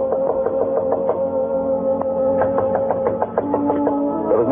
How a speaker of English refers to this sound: Then there was the sound of someone coming up the stairs.